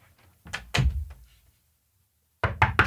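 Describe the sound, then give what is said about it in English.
Knocking on a door, three sharp raps, a pause of over a second, then three more quick knocks, fairly loud with no voices. “Tell me if this is a knock or not.”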